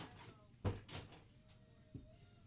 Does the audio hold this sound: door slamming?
yes